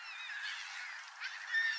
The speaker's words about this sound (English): I'm here today at a very chilly Poole Park. We've got all these black-headed gulls and herring gulls. They're actually standing on the ice at the moment. It's that cold.